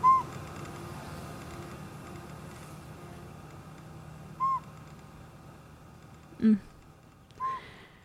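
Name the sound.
northern pygmy owl call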